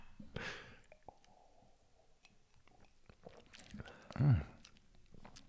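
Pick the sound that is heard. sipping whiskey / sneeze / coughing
sipping whiskey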